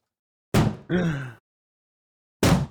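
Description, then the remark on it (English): Two heavy thuds of two helmeted figures slamming against a door, spaced about two seconds apart, with a short creaking rattle of the door just after the first impact. No one speaks. “As it does, both of the forms kind of jerk to the door and start slamming into it.”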